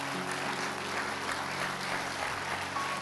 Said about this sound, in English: Come on, let's give all these a big hand clap for their boldness. Thank you for your boldness.